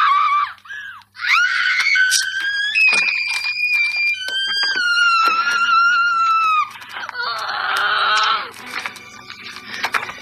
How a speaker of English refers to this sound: And he basically tells her, no, these are bars that the coach gets them to eat them when they want to gain weight. So she gets really mad, and that's, yeah, we get that scream.